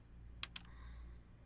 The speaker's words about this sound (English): It like bounced up onto the other dice in the tray. And then landed like and landed with the point, up.